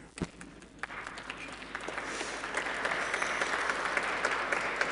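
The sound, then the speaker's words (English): Audience applause that starts with a few scattered claps and quickly swells into steady, dense clapping, growing louder and holding at a full level to the end. “Thank you, brave applauders.”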